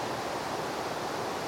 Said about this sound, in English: Just try your best to tune in to the sound of this water on the podcast and tune out of wherever it is that you are, wherever your head is at right now. And let's just experience the sound of this water together, across time, across places.